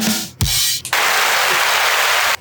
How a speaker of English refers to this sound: This is an applause button.